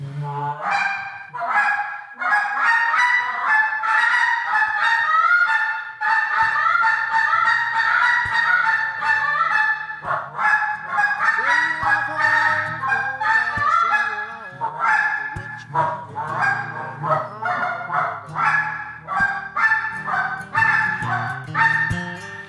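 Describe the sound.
A goose call blown in a fast, continuous routine of loud honks and quick clucks, rising and falling in bursts with no talking, steady for the whole stretch.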